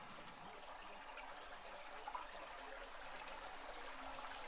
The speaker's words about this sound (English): And now I invite you to stick around for a few minutes of the pristine sounds of this beautiful waterfall.